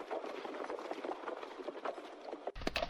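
Horse hooves clip-clop steadily at a brisk pace over a dense, rumbling background, the hoofbeats continuous throughout, with a brief louder shift near the end; horses ridden on a track along a river in the evening.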